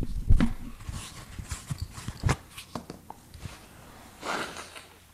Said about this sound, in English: What's that? Blowing my nose? I'm sorry. I'm human.